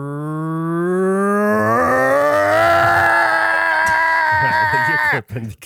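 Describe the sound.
A voice imitates a jackhammer with a loud, sustained buzzing hum that rises in pitch and takes on a rapid rattling pulse, holding for about five seconds before breaking off abruptly.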